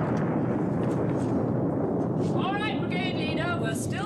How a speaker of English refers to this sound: Those explosions are getting closer.